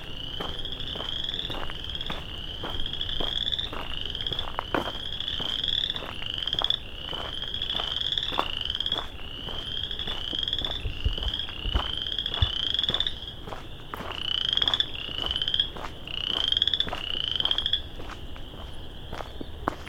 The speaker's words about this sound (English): A lot of frogs.